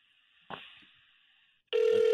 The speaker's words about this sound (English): Oh, hey, my phone's ringing.